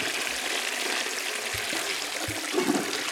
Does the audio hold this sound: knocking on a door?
no